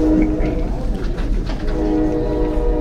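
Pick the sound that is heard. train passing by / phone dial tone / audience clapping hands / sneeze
train passing by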